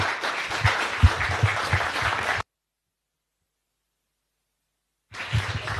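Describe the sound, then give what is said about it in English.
A round of applause from a crowd for a speaker at the end of a session: dense overlapping clapping that stops abruptly, followed by a few seconds of silence before the clapping resumes briefly at the end. “a hopefully strengthening round of applause.”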